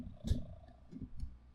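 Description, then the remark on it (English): A male cat purrs softly into a microphone, a low, steady rumble that swells in slow pulses, with a brief rustling bump near the start and no one talking. “And he's purring up a storm. Listen.”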